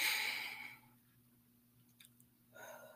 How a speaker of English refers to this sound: Sure, we all breathe. Of course, that is one of the things that keeps us alive. But are you breathing on purpose? Are you taking a deep breath in?